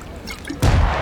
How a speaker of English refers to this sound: What was that? It's a gunshot.